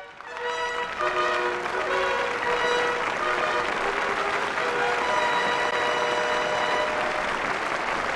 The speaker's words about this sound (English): And you can hear the applause from the audience